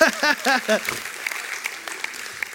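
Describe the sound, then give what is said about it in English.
A short burst of voiced sound gives way to a light, scattered round of audience applause, a patter of claps that stays fairly soft and steady before fading. “Now, no one has clapped for me yet, so all right.”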